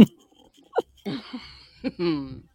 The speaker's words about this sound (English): Ladies and gentlemen, welcome to the sweet sounds of Milk Dog snoring.